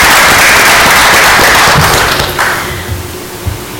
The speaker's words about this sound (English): We beat them 72-3, so I think that absolutely deserves a round of applause because that's amazing.